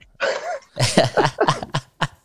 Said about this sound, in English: I heard it, bro. We heard that cough. What cough? I didn't cough, man. You coughed, bro.